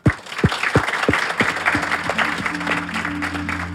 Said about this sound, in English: Please, round of applause for everybody.